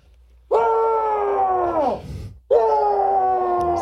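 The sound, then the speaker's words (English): A man lets out two long, loud, strained yells of rage, the first holding steady before dropping in pitch and trailing off, the second bursting in right after and sustained. “Yelling again. Sorry, I had to get some of that rage out.”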